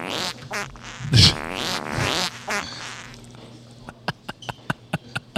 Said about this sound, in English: I brought back the randos. I like it, the rando fart noises.